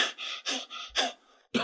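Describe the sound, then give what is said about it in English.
A voice imitates Simon Peter panting out of breath as he arrives at the tomb: five or six quick, breathy huffs in a steady rhythm, fairly loud, with a brief pause before a final sharp exhale. “Peter's panting, right?”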